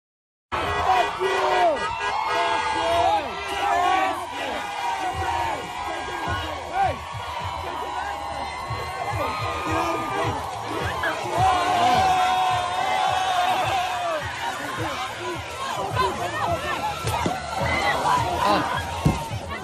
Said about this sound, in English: video out of New Orleans, where an off-campus rally near Tulane University gets out of hand as a man attempts to set an Israeli flag on fire and a pro-Israel student tries to stop him, whereupon he gets beaten with a flagpole and chaos ensues.